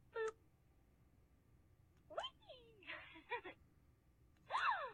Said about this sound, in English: Like a gasping sound? Seriously?